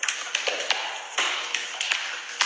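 A string of sharp, crisp hand claps from someone behind the speaker in a TikTok video, about eight in all, landing at an uneven, irregular pace over a steady hiss, with no voices.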